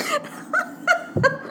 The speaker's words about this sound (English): Why you need to clear your throat, I just do not know.